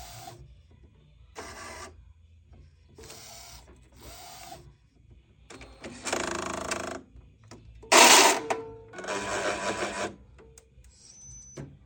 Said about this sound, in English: you know, like when you fire up a printer and it like kind of does a few things and it goes, and it's like making noises and stuff.